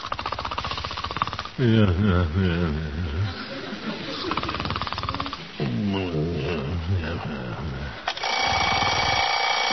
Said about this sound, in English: What's that? Looking for? Oh, alarm. Oh, shut up. Better get up, I guess.